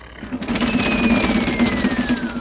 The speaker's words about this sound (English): Did you hear thunder? Oh, that's snoring. They have a man sleeping in that bed.